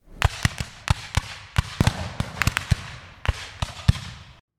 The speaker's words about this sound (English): 20? 30? Who knew how many ancient muskets, all firing at once, a disciplined volley.